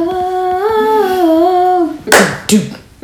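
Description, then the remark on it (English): A held, wavering musical note fades out, then two sharp, loud hand claps ring out about half a second apart, the first slightly longer and fuller than the second. “It's two claps.”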